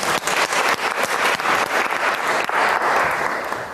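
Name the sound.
audience applause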